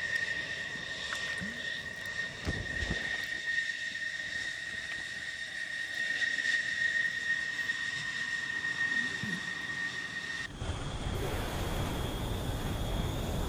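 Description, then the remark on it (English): Engines of F-16 fighter jets flying in formation, loaded up for war, drone steadily with a high, sustained whine over a rough rumble. Near the end the whine drops away and a heavier, low roar takes over. No one speaks. “These are F-16s in formation, flying along, loaded up and ready to go to war.”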